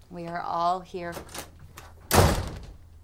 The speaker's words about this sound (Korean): 두 학생은 이런저런 고민을 얘기하고 웬일인지 스티븐스는 따뜻한 말로 위로해주는데 그런 모습을 본 빌리는 기분이 상했는지 문을 쾅 닫고 나가버립니다.